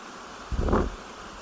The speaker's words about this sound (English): Here we are at Passage Creek in Fort Valley, looking at the power of water. This is a place where water falls over the surface and the results are magnificent. Just listen a minute.